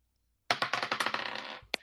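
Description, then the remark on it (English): A rapid clatter of many small hard dice tumbling out of a dice bag and rattling together for about a second, with one last die clicking down after a brief pause. Fairly loud, no voices. “I just forgot to empty out my dice bag.”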